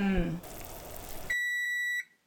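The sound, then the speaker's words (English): A kitchen timer, set while alphabet noodle pasta cooks in boiling water, lets out one steady, shrill electronic beep lasting under a second, following a brief voice and a stretch of rushing, hissing noise. “We're going to set the timer, and then we'll cool down our pasta, and then throw it in at the very end, right?”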